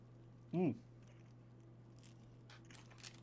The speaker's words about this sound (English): Some crunch from the cheese.